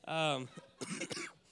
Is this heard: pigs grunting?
no